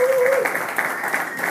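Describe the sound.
A crowd applauds the $700 raised in one spinning class, with dense, steady clapping at an even volume, a brief tonal whoop or voice rising over it at the start.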